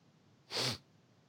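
A single short, stifled sneeze bursts out, a breathy, muffled explosion lasting a fraction of a second against quiet background.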